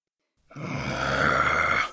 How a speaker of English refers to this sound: The fox growled once more and turned towards his den.